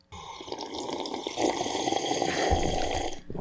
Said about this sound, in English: Loud tea sipping.